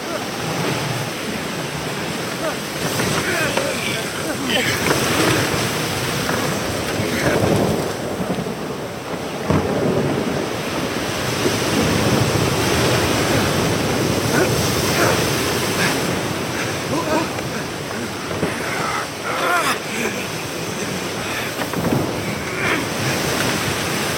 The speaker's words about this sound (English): we're not getting anywhere. The winds are too strong. We should turn back.